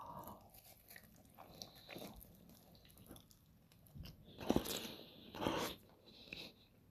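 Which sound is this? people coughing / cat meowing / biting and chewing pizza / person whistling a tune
biting and chewing pizza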